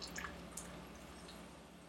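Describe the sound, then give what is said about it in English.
A little water is poured into a cooking pot to give the dish some liquid, heard as a faint, steady trickle with a few soft drips and splashes near the start, no voices. “Then what we're going to do, I'm just going to add a little bit of water to this.”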